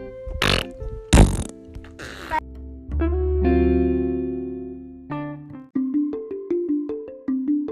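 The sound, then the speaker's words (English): A few loud, rough belching bursts come in quick succession near the start, followed by a sustained electronic tone and a short run of bright, stepped musical notes. “Ooh, burp. Excuse you.”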